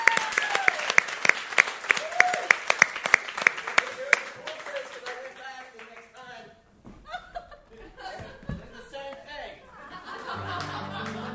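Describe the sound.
An audience claps for several seconds, a dense burst of many hands with a few chuckles mixed in, then the applause fades and people begin talking.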